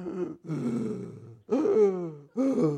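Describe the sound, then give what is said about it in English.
A man's voice mimics slow, ominous heavy breathing: four loud, drawn-out, groaning breaths, each rasping and falling in pitch, with short pauses between them. “all through this movie, before he chopped somebody's head off, you could hear this breathing.”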